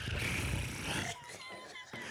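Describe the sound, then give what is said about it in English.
A female cat purrs loudly into the microphone, a dense, steady rumbling drone for about a second, followed by a person's voice talking over fainter background sound. “God, honey, why is she purring?”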